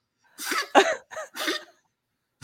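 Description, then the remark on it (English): An old female dog coughs in four quick, raspy hacking bursts, each one rough and breathy, then falls quiet. No one speaks. “And she's old, so she's got this cough.”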